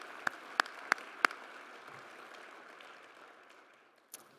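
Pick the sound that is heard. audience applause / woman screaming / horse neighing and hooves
audience applause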